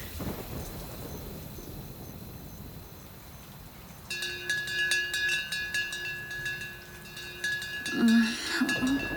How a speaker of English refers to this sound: Why are they ringing the dinner bell in the middle of the night?